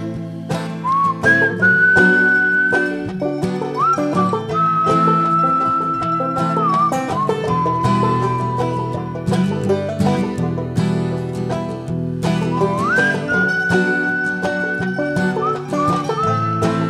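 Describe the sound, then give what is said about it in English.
A person whistles a melodic tune over a full band accompaniment, the clear sustained whistled notes rising and falling across the phrase and returning near the end. “The devil strolled right past me, whistling this old song.”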